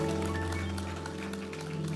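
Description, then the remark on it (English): An audience claps together in praise of God, a dense, steady patter of many hands that holds evenly throughout, layered over a sustained low tonal hum of accompanying music. “Okay, clap. So someone's mind will show up. Praise God. Just let's clap.”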